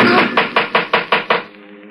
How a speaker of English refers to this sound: It was knocking at the door.